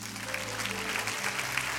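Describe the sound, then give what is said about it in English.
A crowd claps steadily, a dense wash of many hands with no clear individual beats, applauding a preacher's point about grace. A low hum runs underneath the whole time. “You see, yeah, you can clap for that.”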